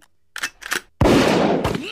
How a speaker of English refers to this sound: You know, let me put a gunshot up in here. I love my toy.